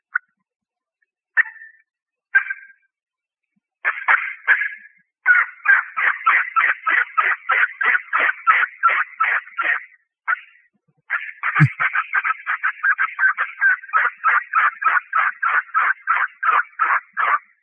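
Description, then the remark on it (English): A turkey yelping call performed by a caller plays on its own: a few spaced single yelps, then long rapid runs of loud, raspy, mid-pitched yelps in a steady rhythm, with a brief pause between series. “All right, here's a little bit of yelping for you.”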